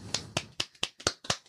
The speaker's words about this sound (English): I hate it when people clap in a circle and call it a round of applause. That is dumb.